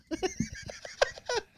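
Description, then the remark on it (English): A man's voice does a short Tarzan-style yell, a loud warbling yodel that breaks rapidly between high and low pitches in several bursts, sounding a bit like a whinnying animal. “I was doing more of a Tarzan call, I realize.”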